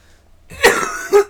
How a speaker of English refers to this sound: You have to cut out all these coughs. Or leave them in, I don't know.